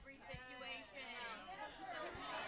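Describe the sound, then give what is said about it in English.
A crowd chatters at once, many overlapping voices forming a steady, fairly loud murmur of reactions with no single voice standing out, plus a couple of soft low thumps. “So it's interesting to hear the crowd here because there's no middle on this subject.”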